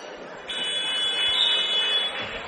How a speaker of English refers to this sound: Buzzer goes off as the rebound came down. There's actually 4.9 seconds left. I don't know what happened there. Something wrong with the clock, I guess.